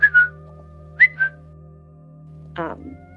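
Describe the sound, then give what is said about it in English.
Two quick pairs of short, high whistled notes made by a person as a vocal tic, each a rising chirp followed by a lower tone, fairly loud over a steady low hum, then a brief voiced sound at the end. “I think I picked up the whistle.”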